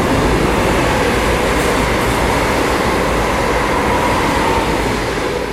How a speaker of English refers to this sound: Very fast intercity train in a tunnel. Yeah, that's loud.